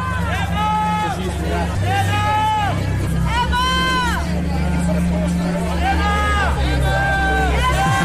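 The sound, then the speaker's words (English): A dense crowd of voices shouting over one another in a loud, unbroken clamour at a red carpet press scrum, people screaming and pushing microphones forward, with strained calls rising above the din and a steady low rumble underneath throughout. “she said you got to get the elbows out because, you know, people can be screaming and trying to get their microphone in front of yours.”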